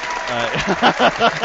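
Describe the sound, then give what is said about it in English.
A short burst of crowd cheering with applause, a dense wash of clapping under excited shouting voices that swells in a few pulses, fairly loud. “yeah, that's right. You cheer me on, motherfucker.”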